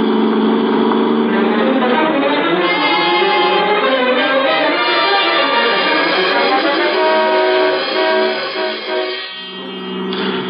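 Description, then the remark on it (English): A car engine roars, loud and sustained, its pitch climbing and wavering as it accelerates, then briefly easing near the end before surging again, as the driver keeps a heavy foot on the gas pedal. “I kept my foot heavy on the gas pedal.”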